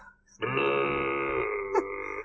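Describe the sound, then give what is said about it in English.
A voice imitates a boat horn with a loud, steady, low droning tone held for nearly two seconds, rough and belch-like, with no other talking. “do the boat sound”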